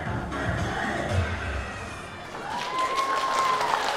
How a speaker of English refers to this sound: Inside the Fa Poa Buddhist temple one Sunday morning, 20 grade schoolers decked out in gray button-down shirts twirl and clap to Vietnamese pop music.